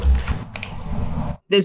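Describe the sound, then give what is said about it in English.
A few quick clicks of computer keyboard arrow keys being tapped sound over a low background rumble. A short voiced sound follows after a brief pause. “Yeah, arrow keys is usually the easiest thing to do.”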